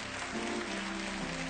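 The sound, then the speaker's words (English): A church audience claps together for the Lord right after a wedding couple's vows and kiss, in a dense, steady wash of many hands that holds at an even level throughout, with a faint low tone humming underneath and no voices. “Come on, give the Lord a hand clap just right there.”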